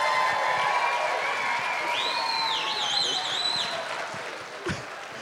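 An audience claps and cheers for a man after his singing, in a dense, steady wash of applause, with shrill rising whistles cutting through midway before the noise eases slightly toward the end.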